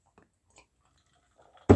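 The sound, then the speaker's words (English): Someone drinks water: a few faint, soft mouth sounds, then one loud, wet gulp right at the end. No one speaks. “I mean, because you gulped it like it really, really tastes water good.”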